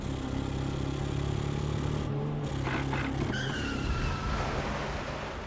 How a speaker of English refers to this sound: Routing him from his hideout, the Northsiders pursued him relentlessly in a high-speed car chase, where Weiss hung out of his car window, emptying his guns into Jenna's car as Bugs Moran reloaded for him, until finally, the bullet found its mark.